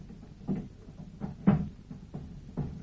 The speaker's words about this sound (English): What's he doing? Sounds as if he's moving the furniture about. He's barricading the door.